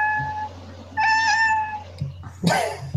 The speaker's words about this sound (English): then all of a sudden the cat meows